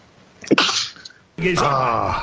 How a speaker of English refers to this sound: Excuse me. I must have some allergies. Exactly. I have one more in me. Isn't it funny how there's never just one sneeze?